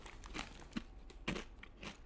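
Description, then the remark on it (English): Crisp crunching of someone biting into and chewing a vintage taco-flavored Doritos tortilla chip, with several sharp bursts spread unevenly across about two seconds and no talking. “So I'm going to eat one now.”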